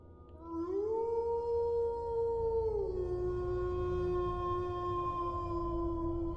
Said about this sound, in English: when we hear coy dogs howling in the distance. Then we hear coy dogs howling from behind us. Eventually, they are howling all around us and clearly getting closer.